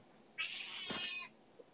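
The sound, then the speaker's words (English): A single drawn-out meow from a hungry, angry female cat, loud, rising into a harsh, insistent wail for about a second before breaking off. No one speaks over it. “She's hungry. Aw, well, go feed her.”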